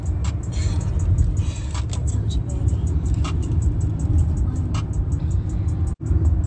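car driving

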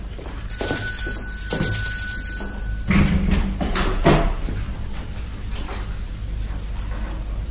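doorbell ringing

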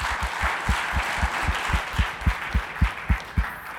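audience hand clapping

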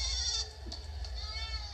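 goat bleating

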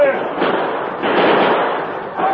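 gunfire

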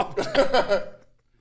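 cough

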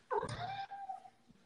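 cat meowing

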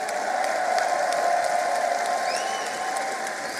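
crowd applause

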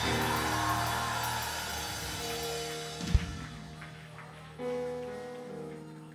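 audience screaming

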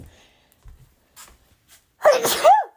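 sneeze

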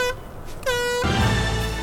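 air horn blast

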